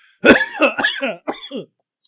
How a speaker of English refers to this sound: Here comes that cough.